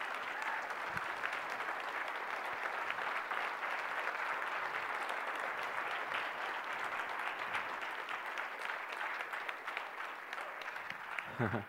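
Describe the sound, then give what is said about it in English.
A church audience claps steadily for about twelve seconds to honor people, a dense, even wash of many hands with no pauses, staying loud throughout before a brief flutter at the end. “They can't help but clap.”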